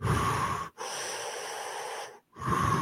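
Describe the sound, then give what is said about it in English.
A person imitates snorkel breathing as when snorkeling: loud, hollow, wheezy breaths, a short inhale, a long drawn-out exhale, then another inhale, with brief silent pauses between them. “Kind of like, you know, when we snorkel, you have that very defined snorkel breathing that.”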